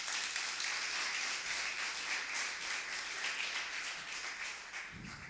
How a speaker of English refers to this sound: Give the Lord a clap offering this morning, amen.